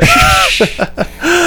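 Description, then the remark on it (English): A voice makes creepy, heavy breathing sounds: a drawn-out raspy breath, then three short panting bursts in quick rhythm and a final long exhale, fairly loud. “I hear you breathing.”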